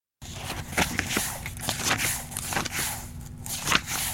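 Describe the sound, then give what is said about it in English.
Paper pages being flipped in a book, a run of crisp, papery rustles and soft snaps at an irregular pace, with no voices. “Flipping paper in a book.”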